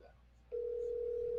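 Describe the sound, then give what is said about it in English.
After a brief quiet moment, a steady electronic phone ringing tone of an outgoing call placed at 1:30 in the morning switches on and holds evenly and clearly until the end, waiting to be answered. “There ain't no way he answers the phone.”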